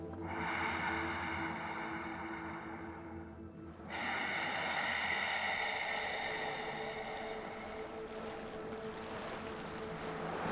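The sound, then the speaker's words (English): Loud breathing in and out through the nose with the muscles at the back of the throat gently constricted, a hissing, ocean-like rush: one long breath, a brief dip, then another long sustained breath, with no talking. “Gently constrict the muscles at the back of your throat, slowly breathing in and out through your nose, creating an audible sound of breath.”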